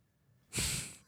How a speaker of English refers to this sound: Farted? Is that what it was? Yeah, that was a fart. She farted. Yeah. It's a weird fart.